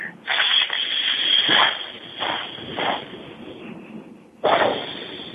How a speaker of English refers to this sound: Now move the diaphragm in again and the air comes out in a hissing sound through your teeth like a pressure cooker.